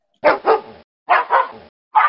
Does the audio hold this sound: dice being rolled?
no